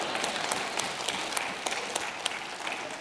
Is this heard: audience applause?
yes